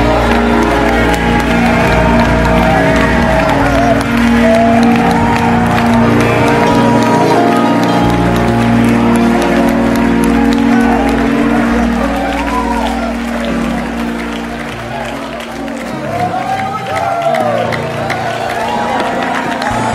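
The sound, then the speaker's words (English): A church audience applauds and cheers continuously to give God praise, a dense, loud wash of clapping mixed with voices and crowd babble that stays steady throughout. “Somebody put your hands together and give God praise.”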